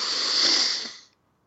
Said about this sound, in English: And then one more time, breathing in through your nose.